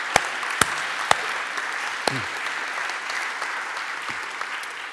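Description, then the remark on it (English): An audience applauds two mission partners steadily, a dense wash of clapping with a few sharp, louder claps standing out near the start and middle, continuing without pause for the whole stretch. “But we'll give them both a round of applause”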